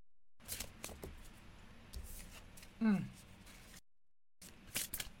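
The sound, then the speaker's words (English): Fairly quiet shuffling of a large Awakened Soul oracle card deck: irregular papery flicks and rustling bursts, a brief pause partway through, then a few more quick shuffles. “And I do shuffle them again because each moment brings different vibrational energies. So I'm shuffling them again.”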